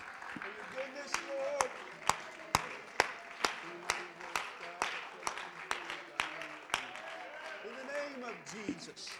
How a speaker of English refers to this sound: Why don't we just clap our hands to the Lord? Let's worship him before we're seated.